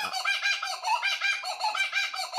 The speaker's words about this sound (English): Okay. I failed. It's a kookaburra.